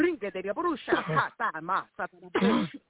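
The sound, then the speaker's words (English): Several rough, raspy bursts of coughing and throat clearing mixed with voiced, strained vocal sounds during a prayer commanding spirits to be coughed out, loud, with a muffled, narrow-band quality like a broadcast or phone recording. “Cough those spirits out.”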